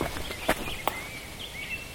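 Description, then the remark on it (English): Thin, high bird calls drift over a soft outdoor background in a conservation area, a few faint whistled notes sliding across the second half, with two sharp footstep-like crunches early on. “The birds are doing the bird thing.”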